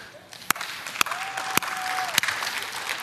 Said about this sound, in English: They clap for everything. How many know that's good too, right? How many know we gotta have the clappers? Any clappers in the house?